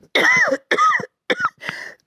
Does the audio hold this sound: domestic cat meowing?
no